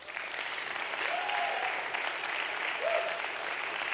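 A church audience claps for their pastor in steady, dense applause that holds at an even loudness for the whole stretch, with a couple of brief rising whoops cutting through the clapping.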